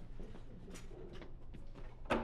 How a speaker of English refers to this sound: Let me just close the door.